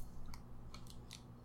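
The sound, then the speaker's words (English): Crunchy chewing on a caramel chocolate candy bar with wafer crackers, with about five crisp, irregular crunches over a steady low hum. No one speaks. “Does it achieve that flavor of crunchiness and caramel and chocolate?”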